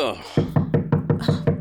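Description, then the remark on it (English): A police squad pounds with fists on Spezi's front door one morning in fall 2004, about seven loud thuds in a fast, steady rhythm, with a faint trace of a voice just before the knocking begins. “So, one morning in the fall of 2004, Gutierrez and his squad came pounding on Spezi's front door.”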